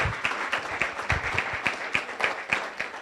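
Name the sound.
audience applause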